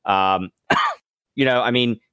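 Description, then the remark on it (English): A loud, harsh cough bursts out between two strained, voiced groaning sounds, three sharp vocal bursts in about two seconds with no other talking. “Cough it up.”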